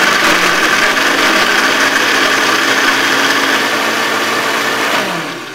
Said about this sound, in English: I put the ice in. Crushed ice to the blender and right. high. Here we go.